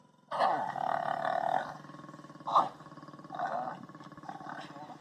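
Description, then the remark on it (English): A lion on top of a lioness roars and growls while mating: a long harmonic roar, then a sharp short burst and a couple of lower rumbling snarls, loud over faint background noise. “Lion sex.”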